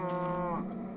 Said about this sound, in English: He's got a chicken back there, that an extra large chicken that he built, and obviously a bunch of cows.